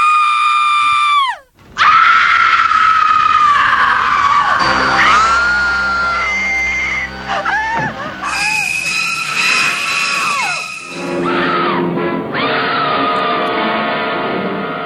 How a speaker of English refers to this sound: Though platforms and special effects change, you can still count on one thing: screams.